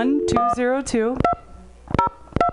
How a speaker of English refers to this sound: Wait, I got to dial.